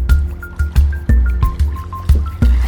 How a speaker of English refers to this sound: So we're traveling down the River Trasili, I think it's how you pronounce it, and it's lovely water. It's like turquoisey. It's quite a wide river, and it follows one of the main roads from Kathmandu to Pokhara, or around that area.